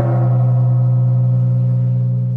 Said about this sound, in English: The 8th Circuit tries to distinguish Ortiz-Boucher, but I'm going to give it a gong.